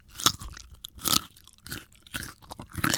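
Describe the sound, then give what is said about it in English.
Crisp, crunchy bites into a raw vegetable, several sharp crunches in an uneven chewing rhythm, fairly loud with no talking. “What's orange? Crunchy, healthy, and delicious. Not just the carrot anymore.”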